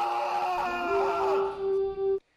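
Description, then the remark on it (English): A loud, anguished scream held for about two seconds, its pitch wavering and straining before it cuts off abruptly. Intense, with no talking around it. “And hearing all that, I'm guessing it makes Vikings fan want to start screaming”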